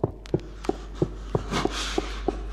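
Running footsteps on stone heard on disc 11: eight sharp, hard footfalls in a quick, steady rhythm, each a crisp slap over a faint background hiss, with no voices.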